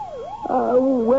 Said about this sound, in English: What's that? There's a police car, I should imagine. It seems to be coming this way.